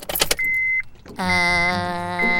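A quick metallic rattle and click of a car key sliding into the ignition, followed by a steady electronic chime, then a loud, sustained buzzing drone that holds to the end.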